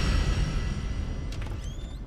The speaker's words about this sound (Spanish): La puerta de la sala se abre para dar paso al juez Casal, que entra con el informe de Barrio Canal y un pequeño grabador de cinta.